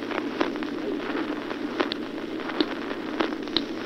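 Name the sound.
fingers snapping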